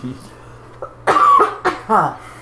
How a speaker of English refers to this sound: And I apologize for the coughs. I'm recovering from the plague.